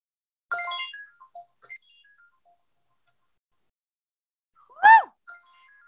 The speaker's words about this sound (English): That is my timer. Yes. You guys know I always go over my timer.